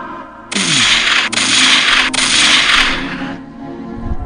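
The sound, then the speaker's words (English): A voice imitates gunshots with three harsh, hissing bursts of breathy noise in quick succession, loud, lasting a few seconds before fading out. “I'm back on my gunshots, man. I'm going to get them right. I'm going to make them sound hard, bro.”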